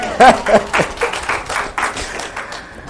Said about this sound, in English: I'm improving every day my English. Can you feel that? Yes. So clap for me, please.